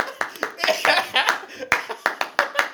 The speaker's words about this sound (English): You gotta clap as much as you want.